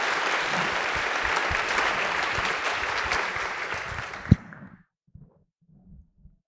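A church audience applauds steadily with dense, crackling clapping for about four seconds after a reading of Luke 6:38, then it quickly dies away, leaving a few faint low thumps and near silence.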